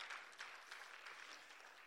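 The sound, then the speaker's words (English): A church audience claps steadily together for God, a dense wash of many hands with no voices over it, filling the whole short stretch at an even, moderate level. “Come on, give the Lord a good clap up.”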